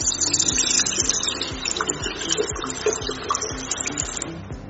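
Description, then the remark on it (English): One liter of isopropyl alcohol pours steadily into a bucket, a continuous gushing and splashing with a faint hollow gurgle throughout, no voices present. “I'm going to pour 1 liter of my IPA into my bucket.”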